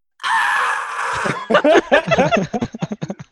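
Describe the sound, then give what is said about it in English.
A voice imitates the video game dinosaur Yoshi being dipped in lava: a loud, strained, high squeal held for about a second, followed by choppy bursts of voices that sound like laughter and talk. “We will all sit in silence and wait for you to make a Yoshi noise.”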